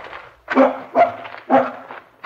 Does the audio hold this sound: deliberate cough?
no